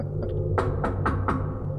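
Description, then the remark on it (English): Four quick knocks on a door in a fairly even rhythm, moderately loud, over a low steady background hum, with no one speaking. “Oh, who's that knocking? Come in.”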